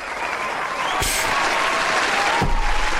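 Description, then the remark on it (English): Steady golf-clap applause from a group, a dense patter of clapping at an even, moderate level, with a couple of sharper bursts cutting through. No voices are heard. “Golf claps all the way around.”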